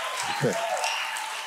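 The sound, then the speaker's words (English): An audience claps steadily, a dense crackling patter that holds at an even level throughout, with a brief voice rising under the clapping early on. “No, I feel bad because I didn't say it in order for you to applaud.”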